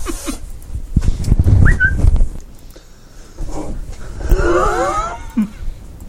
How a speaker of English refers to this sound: That's the Twitter notification sound, yeah, isn't it?